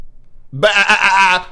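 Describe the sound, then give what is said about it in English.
A single sheep bleats once, a loud, wavering baa lasting about a second after a brief quiet moment, with a shaky, quavering tone throughout. “Sheep is one of the dumbest animals on the planet.”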